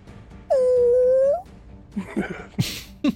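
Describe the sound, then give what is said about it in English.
During a tabletop role-playing game, a voice imitates the muffled wail of a huge whale: one loud, steady, nasal tone held for about a second that rises slightly at the end, followed by a few short breathy, cough-like bursts. “after such massive attacks, it lets out another one of the muted wails.”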